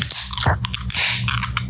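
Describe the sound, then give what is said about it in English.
Several beer cans crack open almost together on a count of three, a quick series of sharp metallic pops, each followed by a bright, fizzing hiss of escaping carbonation. No one speaks. “So let's go ahead and crack these, boys.”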